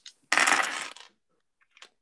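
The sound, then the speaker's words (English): A bright clatter of dice, rolled for damage in a tabletop game, tumbling across a hard tabletop for most of a second, then a couple of faint, small clicks as they settle. No one speaks. “I actually have a nice enough dice for this.”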